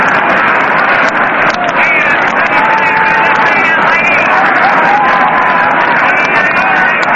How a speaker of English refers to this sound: Hear that crowd still murmuring over that play of Bartell.